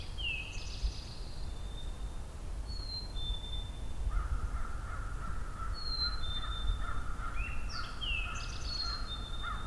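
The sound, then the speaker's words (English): An American crow caws repeatedly, harsh calls running through the second half, while other birds chirp high and thin over a steady low outdoor rumble. “American crow.”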